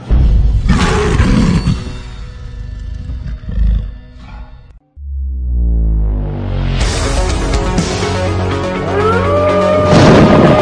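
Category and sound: sound effect, lion roaring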